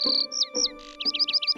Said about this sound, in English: Oh, hello, bird. How are you?